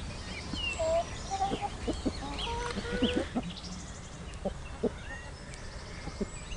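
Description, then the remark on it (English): Several chickens cluck in short, irregular bursts, with soft bird chirps and outdoor ambience in the background. No one speaks. “So a pretty casual insight into the simplicity, really, of keeping chickens, because they are really quite easy to look after.”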